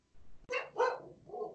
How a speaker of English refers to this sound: Special guest, Tonton. She's barking. Barking that coronavirus away. The pod dog herself makes an appearance.